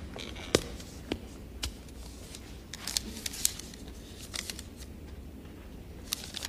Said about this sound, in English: A very audible piece of paper.